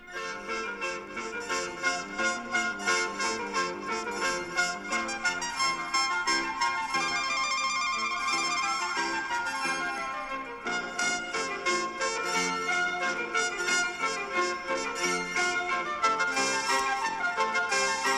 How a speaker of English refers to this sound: No, I'm not playing it, but this is the beginning of... So this became... People, you know, they figured out what these synthesizers are.